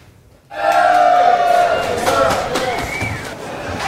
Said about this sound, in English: Wine lovers crushing the doors to get their hands on the more than 8,000 cases of the 2015 vintage up for grabs. Many camping out overnight to be the first in line at the store at 39th in Cambie.